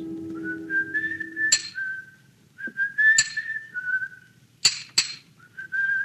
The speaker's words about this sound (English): From the yard itself came a cheery whistle, the noise of hammer blows, and the cold sound of steel meeting stone.